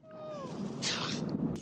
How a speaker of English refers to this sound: The Chamberlain is a Skeksis, and he's another iconic character, almost exclusively due to his supremely annoying whimper.